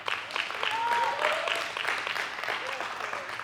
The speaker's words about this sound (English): Come on, clap your hands. Come on, give him some praise.